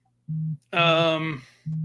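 A phone rings with short, steady electronic tones: a low buzzing beep, then a brighter, richer ringtone note that fades, followed by another low beep, fairly loud.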